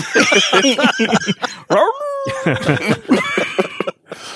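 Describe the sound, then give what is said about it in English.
A dog barks and yips excitedly in quick succession, with a drawn-out whine in the middle before the rapid barking picks up again. “Guys, I talked the dog to bark in binary.”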